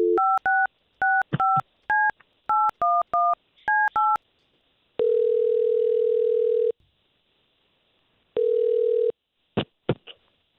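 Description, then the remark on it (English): A rapid string of about ten touch-tone beeps as a woman's phone number is keyed in to call her, followed by two long steady ringback tones separated by silence, then a few brief clicks as the line connects. “Well, we're going to take her phone number that she gave us, and let's see if we can talk to her first, okay?”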